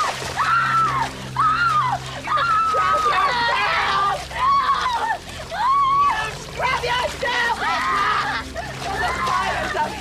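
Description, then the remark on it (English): Water splashes and sloshes continuously, fairly loud, as a woman is forced into a steaming bathtub and repeatedly screams and wails in distress over the commotion. “Like, she could very well have put her in scalding hot water.”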